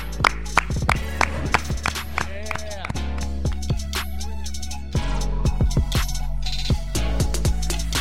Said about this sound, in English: Clap it up. Clap it up.